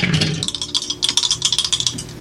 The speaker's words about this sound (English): Got snake eyes on the dice. Oh, no, it was a five on the floor.